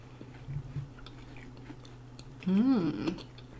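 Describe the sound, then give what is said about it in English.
Soft chewing of a crunchy freshly baked scone over a steady low hum, ending with a brief louder burst that sounds like an appreciative hummed voice. “I'm trying to get a taste of just the scone with no...”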